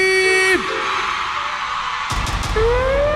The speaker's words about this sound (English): I wanna hear my ladies scream.